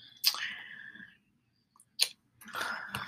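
Wet, crunchy chewing during an ASMR mukbang, with sharp bites and smacking mouth sounds, coming in three loud bursts separated by brief pauses, crisp with no talking.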